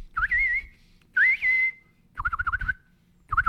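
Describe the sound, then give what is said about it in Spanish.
A person whistles four short bird-like phrases, rising chirps and warbling trills in a high pitch, mimicking a small bird's song, with brief pauses between phrases and low rumble underneath. “¿Tú te imaginas al pajarito cantando?”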